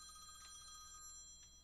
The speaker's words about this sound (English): That's not me, is that? My phone doesn't ring like that. Mine makes a weirder sound. Where is it?